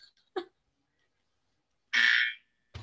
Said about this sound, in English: Can I find one on YouTube really quickly? Yeah. Just like a buzzer noise. Yeah, sure. Right, but don't blow my ears out, right? I won't. I'll make it really, really quiet.